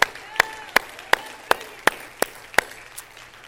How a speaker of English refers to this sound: Let's clap our hands again to the Lord.